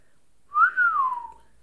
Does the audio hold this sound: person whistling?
yes